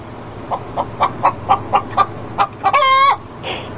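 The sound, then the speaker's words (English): Chickens running around a hotel room cluck in a quick series of short, evenly spaced calls, then one lets out a longer, harmonic crowing squawk, with no talking. “They're in the room right now and they're running around.”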